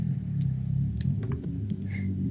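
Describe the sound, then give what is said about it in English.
A Japanese car's engine rumbles loudly outside, a deep, steady idle with slight rises in pitch, with faint higher clicks over it and no one speaking. “It's just a Japanese car. It's really loud.”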